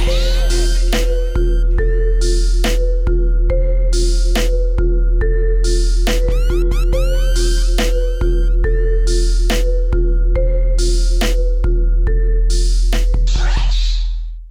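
A hip-hop instrumental plays loudly with no vocals: a steady beat over heavy, sustained bass and a bright, repeating synth melody with chiming high notes, ending abruptly in a brief noisy burst.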